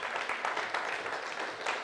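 A church audience in Riverside applauds local healthcare workers in a steady, dense wash of many hands clapping at once, sustained and fairly loud throughout with no speech over it.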